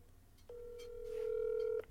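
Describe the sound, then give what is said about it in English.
A single steady electronic telephone tone holds for just over a second as a live phone call is placed, clear, with no one speaking. “Doing a live phone call.”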